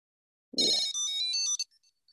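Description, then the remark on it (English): A Tile tracker, rung through Siri to locate it, rings with a bright, high electronic chime lasting about a second, a quick run of melodic beeps following a soft thump, then a few faint trailing tones. “Dog is nearby. I'm ringing it now.”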